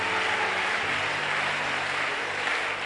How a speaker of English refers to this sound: Clap for Jesus.